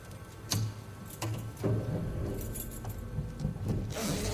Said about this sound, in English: So we are driving in a car, and she's putting a cassette of hers into the car stereo.